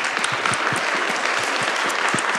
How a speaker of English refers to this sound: Woo, can we get a round of applause for that as well?